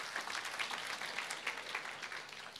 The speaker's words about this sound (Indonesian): Tepuk tangan bagi Tuhan.